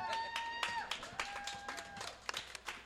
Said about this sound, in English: Thank you all for coming. Thank you for applauding for us.